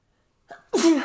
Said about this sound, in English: Ew, you spit on me. It was a spitty sneeze. Cover your fucking mouth. I did. Did you not just watch me? No, you obviously didn't do a good job. You let spray out.